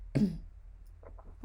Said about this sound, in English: The cough. I'll do that again.